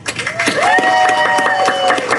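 An audience applauds for the Crockett Elementary Theater Program opening an evening show, a steady wash of many hands clapping with a sustained high cheer or whistle rising above it for about two seconds.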